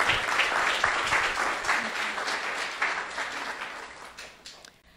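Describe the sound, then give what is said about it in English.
A crowd applauds steadily for a woman and her husband, a dense wash of many hands clapping at once, loud, then tapering off and fading out in the final second. “So let's give a round of applause to both of them.”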